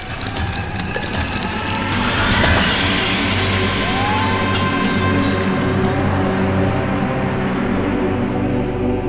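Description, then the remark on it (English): Window glass shatters in a loud burst early on, followed by a long stretch of dense crackling and rumbling noise over a steady low drone, with no voices. “That's also why I'm going to dial emergency services right now. Because the glass in those windows”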